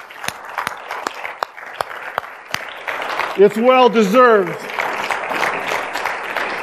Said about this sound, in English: I would like for you, if you can stand up, those that have been part of this ministry for a long period of time, the ones that I just mentioned, if you can stand, just stand. And I want to give them a round of applause and just a thank you.